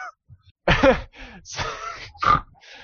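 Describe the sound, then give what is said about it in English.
People imitating pig snorts: a quick run of loud, grunting snorts and nasal huffs, one after another with brief gaps, and no actual talking. “I love how out of all of us, the one that actually snores is the one that's not doing a pig face.”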